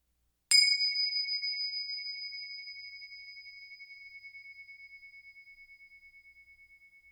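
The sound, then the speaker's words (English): A bell is struck once, giving a bright, high-pitched ring that lingers for several seconds, slowly fading with a gentle wavering pulse. No voices are heard. “First, let's settle in with the sound of the bells.”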